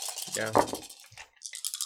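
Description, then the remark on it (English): Physical dice thrown by hand clatter and rattle in a quick burst of small hard clicks, with a brief voice sounding in the middle before more scattered rattling at the end. “This should just be the whole show. Just dice rolling.”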